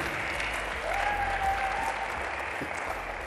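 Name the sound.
audience clapping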